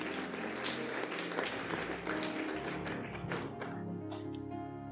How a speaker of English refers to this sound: Somebody clap your hands and give Jesus glory. Hallelujah.